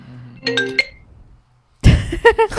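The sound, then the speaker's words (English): An Apple computer rings with an incoming phone call: a short run of bright electronic chime notes, a brief gap, then a louder burst of repeated ringtone tones over a rush of noise. “When I get a phone call, I blame Apple. I can't not make like my computer start ringing.”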